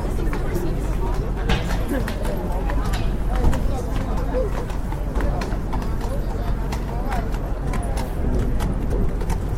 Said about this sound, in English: Horses.